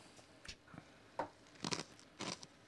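Someone chews and crunches food up close, with about five crisp, irregular crunching bites over a quiet background and no talking.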